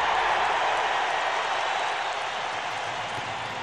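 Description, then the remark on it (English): A large crowd roars and cheers in a dense, continuous wash of noise that holds steady at full volume for a few seconds, like a packed stadium erupting, as a player celebrates a goal scored seconds before the end with a backflip. “The crowd roars again.”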